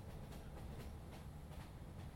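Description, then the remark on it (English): A train in India, on a journey from Mumbai Central Station, rumbles steadily along the tracks, a continuous low roar with faint rhythmic clicks of wheels passing rail joints, without any voices. “I took a train across the broad chest of India.”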